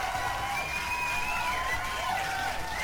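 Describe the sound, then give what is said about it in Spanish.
A crowd applauds steadily for a few seconds, a dense, even wash of clapping mixed with cheering and a sustained high whistle-like tone, with no break in the noise. “Un pinche aplauso, gracias por estar escuchando esta tomada de pelo.”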